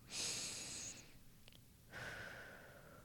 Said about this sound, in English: Anyways, so the air of your being. Hello, your breath, my favorite thing ever, breath work. Breathing.